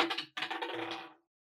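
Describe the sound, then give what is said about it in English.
Dice rattle and tumble across a hard table during a tabletop role-playing game, rolled for an acrobatics check: a quick burst of clicks, a brief pause, then a longer clatter that settles to a stop. Fairly crisp, with no voices. “Do I need to roll the dice for this? Yes, you do.”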